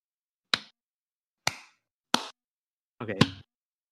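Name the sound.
group hand clapping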